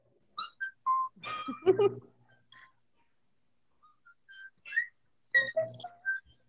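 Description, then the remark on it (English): A bright whistled melody of short, hopping notes opens a song's intro, playing in two phrases separated by a pause, with a brief burst of fuller music backing in the first phrase. “I love this song because of the intro, the whistle.”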